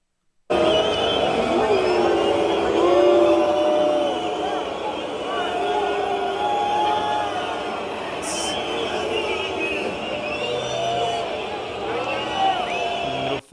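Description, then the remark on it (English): A large crowd at a Rugby World Cup match boos Emmanuel Macron loudly, a dense, sustained roar of many voices with wavering drawn-out tones, continuing steadily for about thirteen seconds without a break. “Then Emmanuel Macron booed at the World Cup rugby event.”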